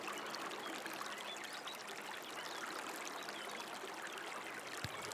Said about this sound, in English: Beautiful trees in full bloom line the riverbanks. Flower petals fall from the trees and float on the surface of the gently flowing waters.